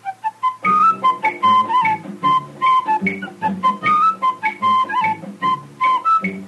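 A man whistles a bright, bouncy jingle melody, the notes clear and close, backed by a steady rhythmic accompaniment of strummed chords throughout.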